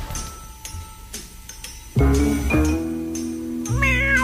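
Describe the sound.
A voice imitates a cat's meow, loud, with drawn-out wavering tones in a couple of bursts after a soft ticking start.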